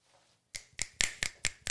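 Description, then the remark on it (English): A brief round of applause: about six sharp, evenly spaced hand claps in a quick steady rhythm after a moment of quiet, with no one talking. “Thank you for the applause there.”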